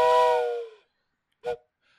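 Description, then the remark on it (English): A whistle is blown in a loud, steady blast that tapers off, followed after a pause by a second short, sharp toot, with no talking. “I think you can blow the whistle.”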